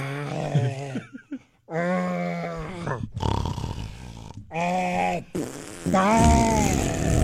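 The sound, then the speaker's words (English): A voice imitates a sleeper's strained groaning mixed with raspy, sputtering fart-like noises, several loud bursts in a row with brief gaps, no actual words spoken. “I remember describing your sleeping once as a grizzly bear who's being tortured to perform farts.”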